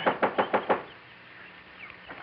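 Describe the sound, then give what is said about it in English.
Five quick, evenly spaced knocks on the front door of a house on North Roxbury Drive, loud, followed by a quiet pause with faint room noise. “When we finally pulled up in front of the beautiful home on North Roxbury Drive, I jumped out of the car and tore on up to the front door.”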